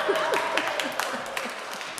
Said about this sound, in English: I think most of you know that I was a veteran teacher. I taught 43 years. 43 years, people, let's have some applause.